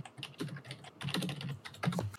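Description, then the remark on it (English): Quick typing on a computer keyboard, a dense, irregular clatter of keystrokes with a brief lull partway through, then another fast burst of clicks. No one speaks. “You'll have to type that.”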